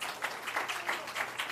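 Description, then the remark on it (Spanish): A church audience applauds in praise, many hands clapping together in a dense, continuous wash with a few louder bursts, no voices standing out. “Dan un aplauso de alabanza.”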